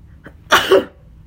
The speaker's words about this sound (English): Whenever I start sneezing, that's when I know I'm at my limit, right?